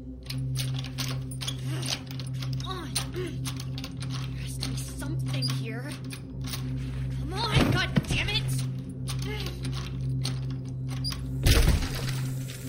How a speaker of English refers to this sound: Finally, there's the sound of wood breaking, and it's like someone has broken the seal of an airlock in space.